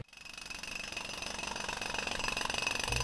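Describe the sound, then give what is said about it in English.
A jackhammer pounds steadily at a construction site, its rapid, rattling bursts running continuously and growing slightly louder, with a harsh metallic clatter and no voices. “The sounds of construction, cars honking, or even airplanes flying over can interrupt your thinking or what you're doing.”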